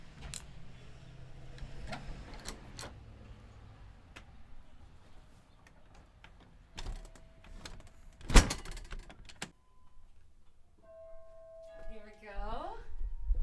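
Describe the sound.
The large, heavy front door of the Kneeland Walker House, home of the Wauwatosa Historical Society in Wauwatosa, is handled with several clicks and knocks, then a loud clunk as it opens, followed moments later by a ringing door chime, with faint voices in the background.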